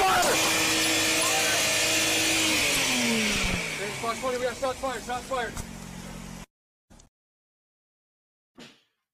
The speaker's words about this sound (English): you can hear the engine revving